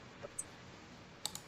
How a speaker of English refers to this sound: I just threw one of my dice on the floor.